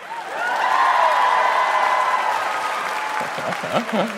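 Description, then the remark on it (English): A crowd bursts into steady applause with some whooping mixed in as a comedian is introduced, holding loud for a few seconds before easing off as a man starts talking over the tail end. “Round of applause if you have anxiety.”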